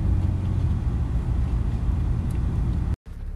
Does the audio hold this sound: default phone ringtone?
no